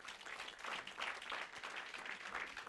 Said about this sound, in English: What do I do? Clap for Jesus.